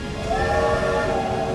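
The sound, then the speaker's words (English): A space train's horn blares in one long, steady, echoing chord of layered tones over a low rumble as the space train blasts off, holding loud for the whole moment without a break. “As soon as her feet were in the train, the door slid shut behind her, and the space train blasted off with an echoing blare of its horn.”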